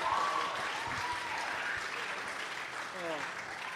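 A steady round of applause, dense clapping spread across a broad hiss-like band, with brief whoops and cheers rising over it. The applause holds at an even level throughout.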